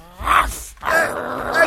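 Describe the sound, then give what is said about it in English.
A dog named Ophiuchus growls and snarls while attacking a man, in two loud, rough bursts separated by a brief pause, the second burst longer and more sustained, with no speech. “Get this crazy dog off of me!”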